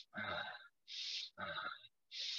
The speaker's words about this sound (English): When you start to breathe, you know, or like, you see this one? Mm-hmm. Somebody breathe like this.